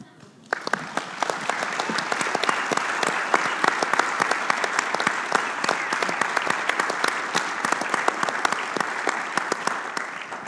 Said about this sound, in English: Thank you so much. There was, again, a prayer team and a vision team that made that up. And just in case you didn't know what you were clapping for, just made themselves available.